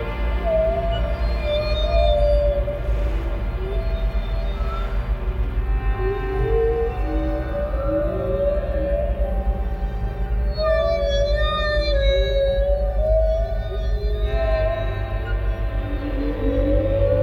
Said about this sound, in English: I need more whale sounds.